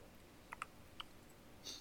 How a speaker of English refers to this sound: No, I rolled dice on my thing. To decide sure things, do, like, while I'm waiting.